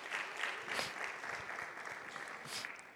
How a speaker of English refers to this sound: In the first 4 months of this year, we've got 4 weddings that are booked in this hall. You can clap.